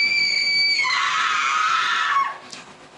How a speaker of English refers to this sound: Do you ever wonder where that scream came from?